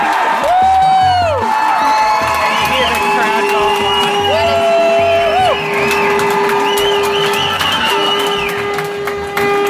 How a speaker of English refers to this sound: Because everyone's excited. As soon as Adelaide scored, everyone's up. You can just hear the crowd so excited there.